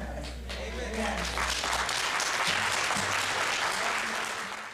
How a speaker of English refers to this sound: So I left that applause in there on purpose